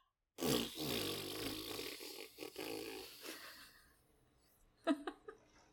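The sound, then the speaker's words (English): A loud, drawn-out raspberry-style fart noise made with the mouth, buzzing and rumbling for about three seconds before trailing off, followed by a few short sputtering bursts. “I'm going to make one big loud final fart noise.”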